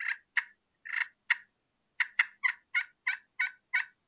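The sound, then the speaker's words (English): A turkey gives excited yelping in a series of about eleven short, raspy, fairly high notes, with a brief pause partway through, then a steadier run of calls. No one speaks. “They're fighting purring. They're excited yelping.”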